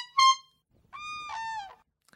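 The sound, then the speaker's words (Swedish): A small handheld horn honks twice, a short bright toot followed by a longer, reedy blast that dips slightly in pitch at the end, with no one talking. “Jag vill testa då och höra hur Fabians tutor låter och se om det är likt”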